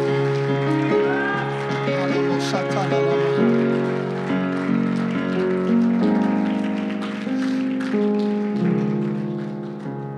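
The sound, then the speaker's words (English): A worshipping crowd claps hands loudly and steadily unto the Lord, the dense patter running throughout over sustained, loud music with singing or raised voices. “Oh, stand and clap your hands loudly unto the Lord and lift your voice and shout unto God in this place today.”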